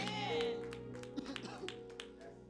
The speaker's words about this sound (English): Clap for the Lord Jesus.